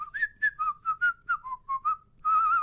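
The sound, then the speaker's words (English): Someone whistles a Christmas song melody, a quick run of short bright notes rising and falling, ending on a longer held note with a slight waver. No talking. “So can you whistle it for us?”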